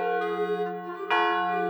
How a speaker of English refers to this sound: The 36 knells of the church bells seeped through the walls of the abbey.